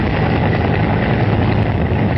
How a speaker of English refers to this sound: There's a helicopter.